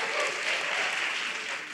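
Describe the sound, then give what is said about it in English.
An audience at a comedy set applauds steadily, a dense wash of many hands clapping at once, fairly loud and sustained with no voices on top. “You can clap one more time if you don't mind.”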